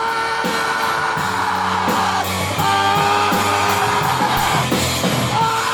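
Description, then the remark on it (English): A man screams at the top of his lungs in long, strained, terrified bursts over loud, dense music that shifts through sustained chords, during the bridge section of a song. The voice is raw and continuous throughout. “The whole bridge section is him just screaming, like, at the top of his lungs, like this terror, like this terrified scream.”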